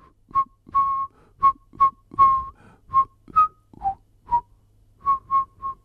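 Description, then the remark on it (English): A short whistled tune, the closing phrase of Jingle Bells, of about a dozen crisp notes, mostly on one steady pitch with a few dips lower, played at a lively rhythm with brief gaps, clear with no talking. “My dad found a way to, he just laughed, and he kept whistling that ending to every song.”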